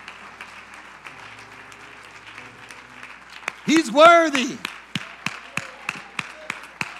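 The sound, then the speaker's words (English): A church audience claps their hands in a steady, rhythmic beat to give God praise, starting midway, with a voice calling out loudly over the first claps and a low murmur before them. “Come on, APC, clap your hands and give God praise for his word right now.”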